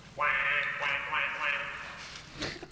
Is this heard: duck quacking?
yes